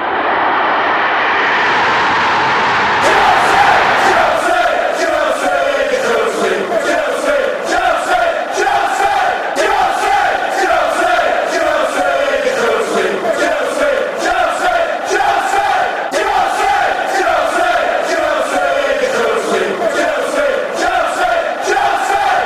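A large stadium crowd of Chelsea football fans roars and chants in unison, with rhythmic clapping punctuating the sustained noise. The surge builds in over the first few seconds and stays loud throughout.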